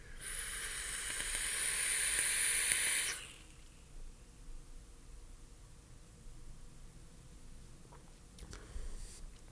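A vape being puffed and exhaled while trying Emperor's Crunch with the Last Snow as a vape pairing: one steady, breathy hiss lasting about three seconds, then fading to near silence with faint rustling and a soft click near the end.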